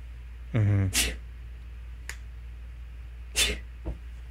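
A loud sneeze: a short voiced rising intake breaks into a sharp hissing burst, followed a few seconds later by a softer breathy exhale and a faint click.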